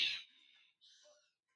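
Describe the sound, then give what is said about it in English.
A bird gives two short, high calls in quick succession, the first opening with a harsh burst and the second a thinner whistle-like note, heard alone with no talking. “10 men and a bird.”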